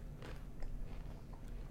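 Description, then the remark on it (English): Crunchy chewing of pretzels: several irregular crisp crunches over a low steady background hum, fairly quiet, with no talking. “It's not going to work with the chewing”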